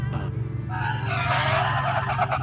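A truck's low engine rumble gives way to a loud, rising brake squeal and skid as it comes to a sudden stop, with no talking.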